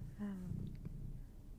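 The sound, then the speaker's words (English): A cat purrs in a steady, low rumble for under two seconds, with a brief tonal chirp near the start and no talking. “I can hear the podcast purring. Can everyone else hear that?”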